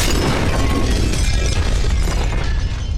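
A loud, sustained crash of all the glass in the Mystery Woman talent agencies shattering, with a dense spray of breaking shards and a low rumbling undertone continuing for a few seconds.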